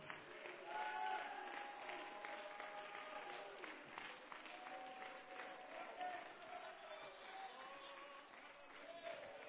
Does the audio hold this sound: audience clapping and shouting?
yes